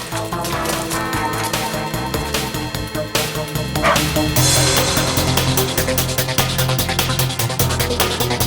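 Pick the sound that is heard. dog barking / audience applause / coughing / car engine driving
dog barking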